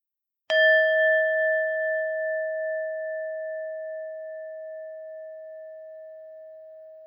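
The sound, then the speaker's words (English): A meditation bell is struck once at the start of a guided breathing meditation, sounding a clear, bright tone that rings on and slowly fades over several seconds, alone in otherwise silent surroundings. “We'll begin and end with the sound of the bell.”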